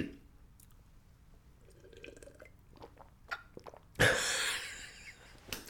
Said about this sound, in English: I'm going to get a sip of water, folks, in case any of y'all audiophiles are listening. Quick water break.